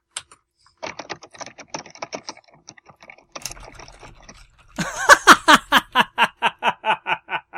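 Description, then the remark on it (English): Rapid clattering of computer keyboard keys mashed in quick irregular bursts for a few seconds on a hacker-typer website that writes code, then a person breaks into loud, rhythmic laughter. “Just go to it and just start mashing buttons on your keyboard.”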